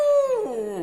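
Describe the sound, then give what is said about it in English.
A single sustained, rich baritone howl, fairly loud, holding a steady tone before sliding gradually downward in pitch over about a second, with no talking around it. “That's perfect! A rich baritone howl!”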